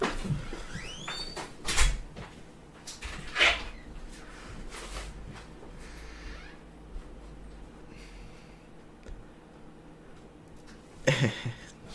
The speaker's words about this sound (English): That's a lot of stuff in one hand. I'll close the door.